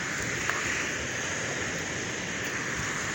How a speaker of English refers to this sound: You listen to the beautiful sounds of the water right now. It's beautiful, it's quiet, and it's nighttime. Real peaceful, kind of real serene-like, but it's a beautiful feeling.